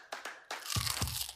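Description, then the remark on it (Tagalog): A few sharp crackling crunches of a bite into crispy chicharon pork rinds, followed by a denser crunching burst with low thumps, no voices. “Kagat na ng chicharon ni Aling Maria!”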